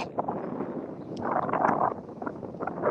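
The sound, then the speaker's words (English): Wind buffets the microphone in a steady, rumbling rush that swells and fades irregularly, fairly loud, with no voices present, outdoors where cows are being viewed. “Oh, it's a little windy there, but man, we get to see cows.”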